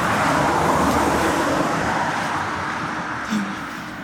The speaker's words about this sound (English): Well, I couldn't hear myself think over the noise of the trucks. There are so many trucks. Well, the truck's gone.